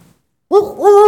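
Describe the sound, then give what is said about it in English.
A rooster crows once, loud, its strained call rising in pitch partway through and still going when the short clip ends after a brief silence. “Cock crows, rooster crows once.”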